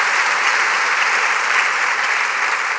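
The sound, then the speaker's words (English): A church audience breaks into steady, loud applause for Jesus, a dense wash of many hands clapping at an even level throughout, with no voices standing out. “Come on, at all of our locations, can we go ahead and give Jesus, the great trail worker, a round of applause?”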